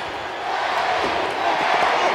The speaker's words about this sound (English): Now the Eddie chants begin from this crowd.